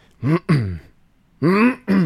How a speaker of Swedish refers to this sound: Ja, jag måste harkla mig först.